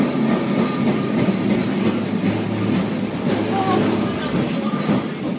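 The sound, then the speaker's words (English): An old, very small tram dating back to the 1930s, in Lisbon, rumbles steadily along its rails through tight curves and steep hills, with a continuous rattling clatter and a brief metallic wheel squeal midway, fairly loud throughout. “I'm not talking about the modern ones, but the older ones are the trams which date back to the 1930s.”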